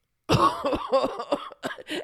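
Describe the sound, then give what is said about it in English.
A rapid run of five or six loud coughs, rough and throaty, following one another with barely a pause and no talking around them. “How about I cough us out to the break?”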